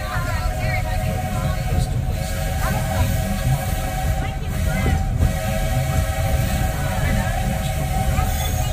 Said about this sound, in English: There are some who say that this steam train is a little old-fashioned, but for me, it's the only way to travel.